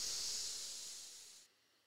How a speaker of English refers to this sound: We're going to breathe in through our nose for 5 seconds and out through our mouths for 5 seconds, okay? Okay. In.